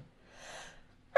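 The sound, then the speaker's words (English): A single sneeze, a soft, breathy burst of air lasting about half a second, heard alone without any talking, followed by a brief sharp sound right at the end. “Bless you.”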